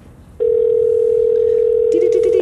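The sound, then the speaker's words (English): A steady, loud telephone dial tone starts abruptly and holds for about two seconds, with a faint second tone and brief clicks near the end, as a call to a friend is placed from a phone. “So if, you know, you don't mind, and if nobody else minds, I'm going to try to call my friend”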